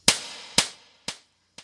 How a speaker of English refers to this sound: I'm calling it. Captain From, you're getting the big slap. Human stupidity, watch out for the backhand.